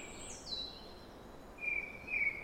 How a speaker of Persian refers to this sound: چند پرنده در هوای صبح آواز میخونن. صدای معاشرت کردنشون خوبه.